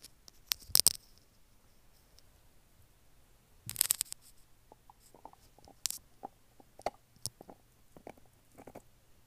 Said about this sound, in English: Oh, well, we're going to take a brief intermission while we listen to Harley chew her bone.